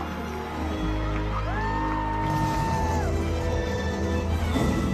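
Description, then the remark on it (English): A large crowd cheers loudly in a sustained, roaring wall of noise, with a high whistle or whoop rising and falling above it partway through. “This was easily the loudest cheer.”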